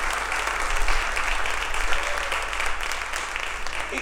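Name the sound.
audience applauding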